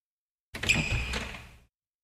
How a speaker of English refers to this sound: The door swung open slowly.